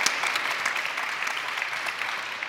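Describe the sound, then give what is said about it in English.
An audience claps steadily for a couple of seconds, a dense, even wash of many hands with no single claps standing out and no voices on top, voting for Kratos as having the best facial hair. “If you think Kratos had the best facial hair, give us a good clap.”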